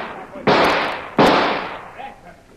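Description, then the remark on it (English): Two loud gunshots about three-quarters of a second apart, each a sharp crack with a long, rumbling decay, fired to blast open a door lock; faint voices murmur afterward. “All right, he's locked the door. Stand back. I'll blow the lock.”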